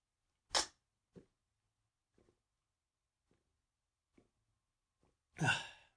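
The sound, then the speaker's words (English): A short noisy slurp of water, then a string of soft, evenly spaced gulping swallows as it is guzzled down, ending in a louder breathy gasp after drinking. No one speaks. “If you could hear me like slurping that, guzzling it down.”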